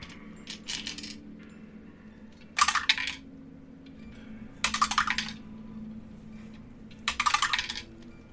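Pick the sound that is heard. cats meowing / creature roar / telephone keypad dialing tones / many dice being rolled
many dice being rolled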